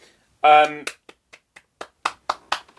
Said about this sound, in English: Also, round of applause for Shannon Elizabeth with some tremendous acting.